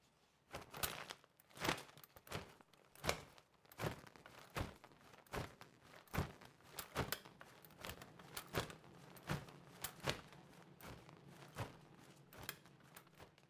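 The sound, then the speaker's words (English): An umbrella is scrunched and crumpled as a foley attempt at bird wing flaps, producing a rapid series of crinkly, crunchy bursts like chewing chips, with faint metallic clicks mixed in and no voices. “The umbrella sounds like somebody chewing potato chips. It's very scrunchy. There's some metal there.”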